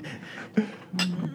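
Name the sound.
glasses clinking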